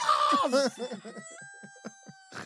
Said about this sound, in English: I know, but you did play an increasingly loud bird. It gets louder on its own. I don't believe that that's true. But you're pressing a button.